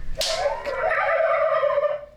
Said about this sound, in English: Is this another one? Yeah. Oh, it's a turkey.